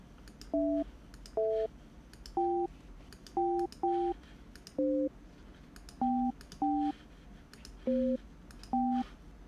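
A series of about eleven short telephone keypad tones, each a paired two-note beep, as a phone number is dialed to call someone, pressed in an uneven rhythm over a faint hum, with no voices.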